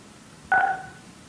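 A single short telephone keypad tone on a call-in line during a Planning Commission meeting, a clear two-pitch DTMF beep lasting about a quarter second, fading quickly into quiet line hiss with no voices.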